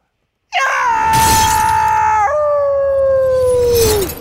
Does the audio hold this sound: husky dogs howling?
yes